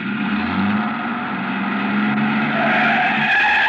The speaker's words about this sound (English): I started back toward the street when a man, a much larger man than DuPas, came out the side door and got into the truck. He turned over the engine and switched on the lights before I could get clear.